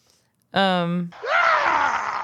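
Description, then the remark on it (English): Screams from people on a video being played back, a woman screaming as she went down: a loud, sustained vocal cry holding a steady pitch for about half a second, then a harsher, breathy scream that rises and stretches on for another second. “Was that that kind of scream?”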